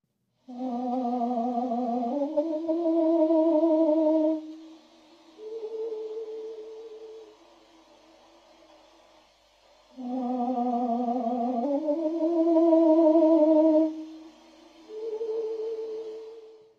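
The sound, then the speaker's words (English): Slowed-down birdsong, deep and almost voice-like: two matching phrases of rich, sustained tones, each stepping upward into a held note, then fading into a softer, lower trailing call. No one speaks. “The first recording was the sound of the second recording, but slowed down to a pace that the human ear mistakenly recognizes it as its own.”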